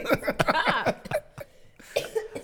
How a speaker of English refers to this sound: Sorry. Irritating my cough.